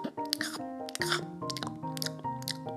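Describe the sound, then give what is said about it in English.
A cartoonish chewing sound effect of garden creatures chewing the petals off a flower, with about five crunchy bites in a steady rhythm over sustained, tuneful background music. “They chew the petals off his flower”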